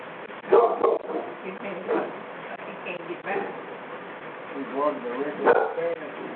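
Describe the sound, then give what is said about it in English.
A dog named Brother Leo barks in several short, irregular bursts spread across a few seconds, moderately loud, with some whiny yips mixed in. “My dog wants to say a word before we close out.”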